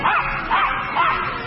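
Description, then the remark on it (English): A trick dog barks three times, counting up to three, in a steady, evenly spaced rhythm, fairly loud, with no talking in between. “Gus, I give you some liver if you count up to three for the nice people.”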